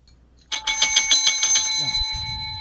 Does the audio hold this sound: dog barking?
no